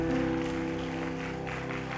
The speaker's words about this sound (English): And I want to take a quick moment and just give them a round of applause and celebrate them. Can we give it up for everybody that makes this place feel like home? Come on.